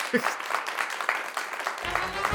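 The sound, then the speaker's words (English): A short clapping sound effect, with many hands clapping in a dense, steady patter at moderate loudness. A low hum or murmur joins underneath toward the end. “I was like, come on, give me the clapping noise.”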